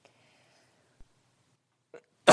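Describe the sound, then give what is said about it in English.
A single loud sneeze bursts out at the very end after a brief sharp intake of breath, following a stretch of near silence with one faint click. “Bless you.”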